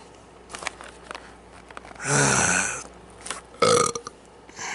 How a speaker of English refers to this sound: That was the final burp of the podcast.